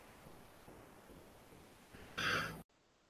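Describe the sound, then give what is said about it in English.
A single sharp sneeze bursts out loudly over a low, steady background hiss, a short breathy explosion that cuts off abruptly into near silence. No one speaks. “All right, I had to sneeze right off the bat there.”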